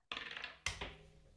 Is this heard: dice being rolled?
yes